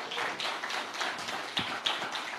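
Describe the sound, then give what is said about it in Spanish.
A church audience in Arkansas applauds the Lord on a morning service, many hands clapping at once in a dense, continuous patter with a few sharper claps standing out; no one speaks over it. “Bueno, ¿cuántos le dan un aplauso al Señor en esta mañana?”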